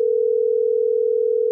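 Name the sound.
telephone call ringing tone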